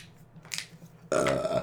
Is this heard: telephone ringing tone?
no